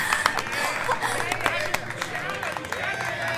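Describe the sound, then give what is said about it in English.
An audience in a bar's dining room, gathered for a dating event, applauds the bar's owner, Gilzog, with steady, dense clapping that carries on for a few seconds, mixed with a murmur of crowd chatter and scattered voices throughout. “Now, why don't you all give him a round of applause?”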